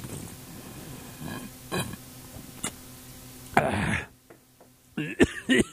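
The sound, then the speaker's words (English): A person coughs and sputters in a few harsh, irregular bursts after taking a swig of strong ginger ale, ending in a rough, strained throaty cough with a groaning edge; short quiet gaps fall between the fits. “I told you that ginger ale, when it's strong, it does make you cough.”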